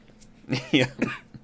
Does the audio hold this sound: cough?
yes